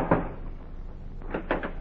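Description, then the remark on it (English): A door is forced open by men searching houses for a runaway slave: a heavy wooden bang, then after a short pause three more rough thuds in quick succession, fairly loud with no voices. “Well, man, do you have to tear my door down?”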